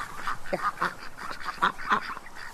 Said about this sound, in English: now are going to go up and feed the duckies. Yeah. There they are now.